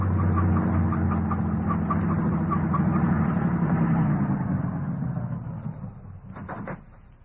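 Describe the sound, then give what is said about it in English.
A heavy truck with no headlights on drives right past, its engine rumbling loud, a deep steady drone that gradually fades as it goes by, ending with a couple of faint clanks. “The truck has no headlights on it, but it's going to pass right by us.”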